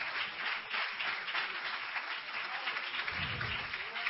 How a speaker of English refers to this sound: Hallelujah. Clap your hands to the Holy Ghost.